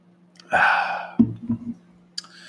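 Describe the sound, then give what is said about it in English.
A breathy sip of Rolling Rock beer from a glass bottle, followed by a few soft gulping swallows and a light clink near the end, with no talking. “And we're going to cheers to that. Take a sip of the Rolling Rock.”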